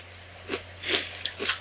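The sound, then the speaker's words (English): Crunchy chewing as two people eat breakfast together, with a few separate bites and crunches spaced about half a second apart, moist and uneven, with no talking. “A sort of companionable chewing.”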